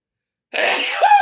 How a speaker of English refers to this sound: Hold on, I got to sneeze.